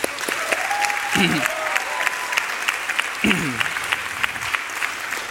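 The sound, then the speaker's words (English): An audience claps steadily, a dense wash of many hands with sharp individual claps poking through, with a couple of brief vocal sounds or cheers rising over the applause. “So I promised we wouldn't clap for him, but maybe we'll clap.”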